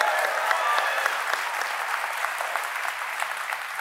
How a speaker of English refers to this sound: You don't have to applaud my questions.